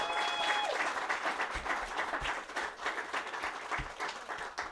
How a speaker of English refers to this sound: Yes, give her a huge round of applause.